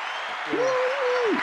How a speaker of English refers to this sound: So let's give these young brothers a round of applause. Appreciate you.